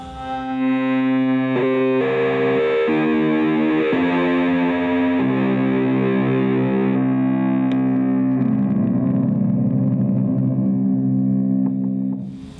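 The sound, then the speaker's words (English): A heavily distorted electric guitar played through a RAT distortion pedal plays sustained, buzzing chords and single notes at a steady loud level for about twelve seconds, with no voices over it. “When I can crank the distortion knob up, it might get too loud in here, but.”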